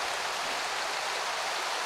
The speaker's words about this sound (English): And I think this is probably at the point where I'm under their waterfall